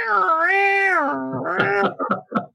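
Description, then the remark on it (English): A voice imitates a bagpipe with a loud, nasal, wailing drone that bends in pitch for about a second, then breaks into choppy, warbling bursts before trailing off. “So how does it begin now for you? Because I'm getting the bagpipe.”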